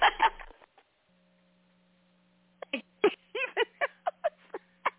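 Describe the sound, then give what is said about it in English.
A person imitates a chicken clucking with a rapid run of about ten short, choppy vocal clucks, fairly loud, after a brief sound at the start and a pause. “Can you give me a chicken sound?”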